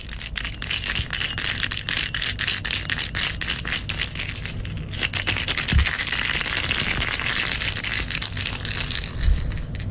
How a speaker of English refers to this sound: All right, is that A, a cat toy, B, a bell, C, keys, or D, magnets being shaken together? Yeah, it's a cat toy with a bell in it. You absolutely nailed it. I knew that right away as soon as I heard it.